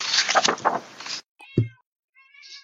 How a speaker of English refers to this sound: Well, if she was someone's if she was down cat with... is someone's cat is very upset. Yeah, it's mine.